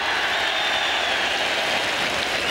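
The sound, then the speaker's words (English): Sustained applause from a large outdoor golf crowd, a steady dense patter of clapping hands that fills the whole stretch without pause or voices, as Nick Faldo is announced champion golfer of the year with a score of 272. “Well, the crowd really on Nick Faldo's side.”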